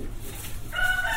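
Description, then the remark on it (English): A cockerel crows loudly, a strained, high-pitched call that rises out of steady low background rumble and holds to the end of the short clip. “The cockerel's going crazy.”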